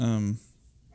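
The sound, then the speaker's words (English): One loud dog bark, short and harsh with a strained, angry tone, then a quiet stretch with faint background noise. “That dog is pissed.”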